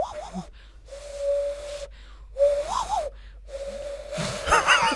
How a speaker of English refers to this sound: Nah, You cracked it. Good to know we can all do different various forms of whistling.